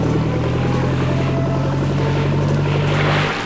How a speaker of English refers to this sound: It was time for me to visit the west coast of Ireland. So I hired a small boat, and using my compass and map, I sailed towards the location.